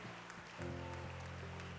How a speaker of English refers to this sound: Can we clap our hands and give God praise this morning?